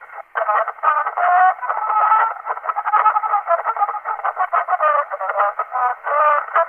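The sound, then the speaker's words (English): A voice mimics the thin, tinny sound of an old wax phonograph recording, a narrow, boxy warble with no low end that runs steadily through the whole clip. “You ever hear old, like, phonograph recording? Oh, or, like, it just wax sounds recordings?”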